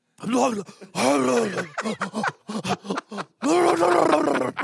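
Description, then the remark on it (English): A person imitates the shocked noises of taking an ice-cold shower in Alaska: a run of loud, strained groans and grunts broken by sharp gasping breaths, rising and falling in pitch, with no words spoken. “If your crying is anything like the noises you make in Alaska while taking an ice cold shower, everyone would have heard everything.”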